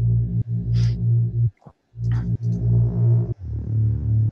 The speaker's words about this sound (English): Then we have the mid bass.